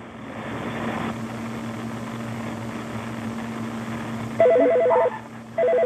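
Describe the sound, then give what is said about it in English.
An electronic doorbell rings out in two bright, tonal bursts near the end as a fire crew arrives, cutting loudly over a steady low hum that fills the background throughout. “All right, don't answer the phone. It's the door.”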